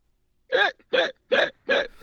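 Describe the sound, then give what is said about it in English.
Four loud, evenly spaced hiccup sounds, each a short voiced yelp, most likely a person imitating two cheetahs having the hiccups, repeating quickly with brief silences between them. “And they also have the hiccups.”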